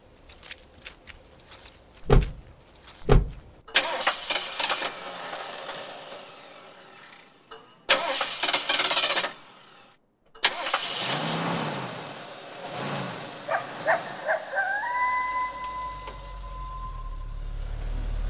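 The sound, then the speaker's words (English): A car engine cranks through a few sputtering attempts after some clicks, then catches and runs, revving up with a rising whine near the end. No one speaks. “Come on, help me get the car started.”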